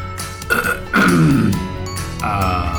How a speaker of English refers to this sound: Like, when you want to make fun of me, you don't even have to say anything. You just clear your throat, and that's all you have to do.